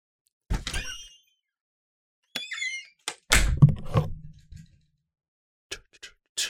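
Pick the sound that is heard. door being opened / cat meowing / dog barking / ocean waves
door being opened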